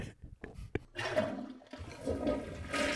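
A toilet flushes: a few clicks of the handle, then a loud, rushing swirl of water that builds and keeps going. No one speaks.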